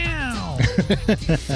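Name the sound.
cat meowing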